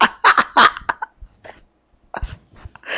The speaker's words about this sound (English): You could shit your pants, well, you can literally cough out your lungs.